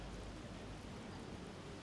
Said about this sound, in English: The rest of the world seems to fade away, blocked out by the white noise of the rain.